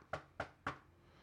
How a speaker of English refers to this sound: Knock on wood.